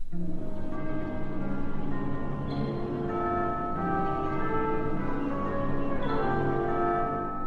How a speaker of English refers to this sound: The air stirs, and a fresh breeze conveys the distant sound of bells. It's a breath from another world, the world of the coming new day.